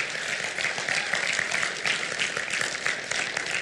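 An audience claps for the Lord after a prayer, a dense, steady burst of applause that stays loud and even for several seconds, with no voices breaking through.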